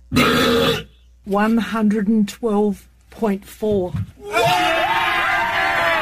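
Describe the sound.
A huge, prolonged world-record burp from Australia, measured at 112.4 decibels, blasts out, followed by short voiced bursts and then another long, loud, rumbling belch that carries on to the end.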